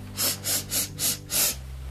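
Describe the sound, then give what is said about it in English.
A person imitates the dog Leo sniffing to the east and west while searching for Snowball, with five quick, evenly spaced, fairly loud nasal sniffs, followed by a brief quiet pause. No words are spoken. “He sniffed to the east. He sniffed to the west.”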